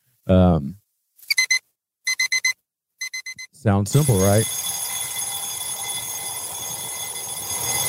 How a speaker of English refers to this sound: this is what Kat found is an alarm tone on YouTube